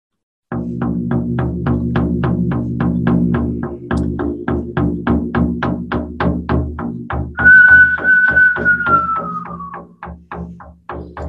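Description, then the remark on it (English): A steady, rapid rhythm of sharp beats runs over a low humming drone, then a person doing preparation work whistles a clear, sustained note that holds its pitch before sliding gently downward and fading. “As I whistle and do some preparation work, you always must step away from your ordinary thoughts, just like we're trying to do for the new year.”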